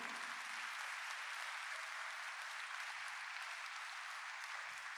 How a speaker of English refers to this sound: Can we put our hands together for this wonderful men and women of God? That clapping is so small. I think you can do better. A little more.